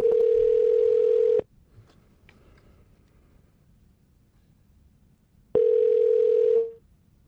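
A steady electronic telephone tone hums for over a second as a call to Spectrum is dialed, cuts off into about four seconds of silence, then sounds again for roughly a second. The tone is loud and unvoiced, with no talking.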